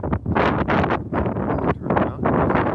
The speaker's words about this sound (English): A little windy there.